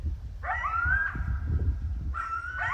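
Two coyotes from a pack living down the hill yip and whimper in high, wavering whines that rise and fall, one long drawn-out cry followed by shorter overlapping yelps, over a low, steady rumble of background noise, early one evening near Bellingham, Washington State.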